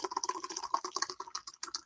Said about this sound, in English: You know that sound. I thought I heard that nitro sound. It's a Berry Blonde Nitro Ale. And I couldn't recommend this one enough. You got to pour hard.